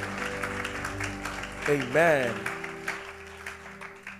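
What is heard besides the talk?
audience clapping hands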